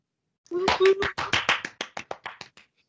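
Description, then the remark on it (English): A short round of applause: about a dozen crisp hand claps in quick succession, loud at first then gradually softening and slowing before stopping, with a brief vocal sound near the start. “That was a round of applause just in case no one could hear it.”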